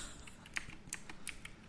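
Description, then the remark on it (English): Rapid, irregular clicks of a computer keyboard being typed on, a dozen or so sharp keystrokes at a soft level, with no voices. “I hope you can't hear my keyboard. Yeah, we can definitely hear it.”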